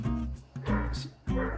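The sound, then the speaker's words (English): Dogs bark and whine outdoors in a few quick, uneven bursts, fairly quiet, with short pauses between the outbursts. “Their dogs are going crazy outside.”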